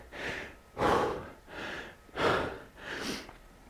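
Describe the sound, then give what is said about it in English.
Heavy, labored breathing while recovering after a rowing workout, five or six deep alternating inhales and exhales in a steady rhythm, the exhales louder and breathier, with no talking. “Didn't take too long for my breathing to get under control.”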